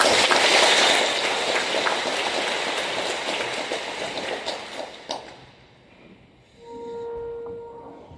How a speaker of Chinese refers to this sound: 现在我们以热烈掌声欢迎冯主教为我们主祭。